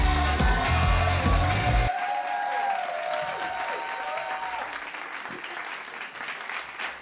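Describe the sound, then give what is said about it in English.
A packed crowd applauds loudly, with cheers and whoops rising over steady clapping that carries on throughout. “Packed crowd again.”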